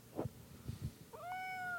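A single drawn-out cat meow, clear, rising then holding steady, preceded by a few soft low thumps and rustles.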